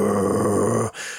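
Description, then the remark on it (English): A menacing truck engine rumble from an early-1970s television movie: a loud, steady, growling bass drone lasting about a second before cutting off abruptly, with no talking over it. “But I imagine in the early 70s, it must have been quite a surprise, especially for a television movie, where the truck is just all bass rumble and the car is this anonymous, pathetic whine.”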